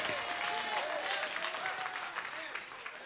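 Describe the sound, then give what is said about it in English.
A crowd claps steadily and densely throughout, shouting and clapping to the Lord, with raised voices shouting and cheering over the applause at a fairly even, lively level. “Hey, come on and shout and clap to the Lord with a voice of triumph if you're ready for your personal harvest.”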